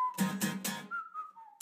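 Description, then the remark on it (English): A man whistles a short tune in an acoustic song cover, the clear melody stepping between a few notes. Three loud, regular percussive hits sound under the opening, and another hit lands at the end. “Got the whistles. He's whistling.”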